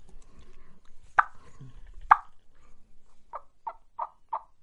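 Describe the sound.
Two sharp, clucking pops are followed by a quick series of five soft, evenly spaced yelps: clucks and tree yelps made on a soft turkey call, with no talking.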